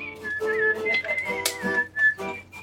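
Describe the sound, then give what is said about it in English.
A professional whistler carries a melody in clear, sustained notes that glide smoothly between pitches, with a few brief breaths and a softer, fuller sound underneath. “And then, of course, they ask, like, what do you play? And then it's like, I whistle.”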